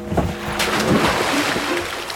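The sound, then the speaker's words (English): A small craft is towed through the water toward shore, with continuous churning and splashing and a few louder slaps of water over a steady wash, lasting a couple of seconds. “we're on water. Sit back down. I'll tow her to shore.”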